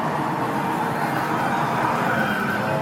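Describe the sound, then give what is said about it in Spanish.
Loud, continuous electronic noise from a racing-car arcade machine in a game center, which has two speakers in front beside the steering wheel: a steady engine-like roar with siren-ish tones, dense, filling the whole stretch without pauses or speech. “Y hay máquinas, por ejemplo, de autos de carrera.”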